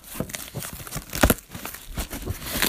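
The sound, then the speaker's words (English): Crisp paper crinkling and rustling with a sharp tearing burst near the middle as a package, cut with a knife, is popped open and its white packing paper handled, no voices. “It's another package. It has that white packing paper.”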